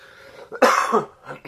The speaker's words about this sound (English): Apologies. Trying to get over a cold, and I've still got a bit of a cough.